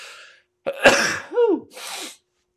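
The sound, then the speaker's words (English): A heavy, explosive human sneeze after a tickly nose, loud, with a sharp inhaled buildup, a forceful burst, a voiced trailing exclamation, and a breathy exhale at the end. “I got a very heavy sneeze, just like my daughter.”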